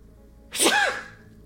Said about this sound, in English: Excuse me while I sneeze.